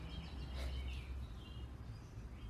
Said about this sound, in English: And these birds don't seem to know that it's nighttime. This is what they do out here. They'll do this probably all night. This is a really good year for them. I hear so many different kinds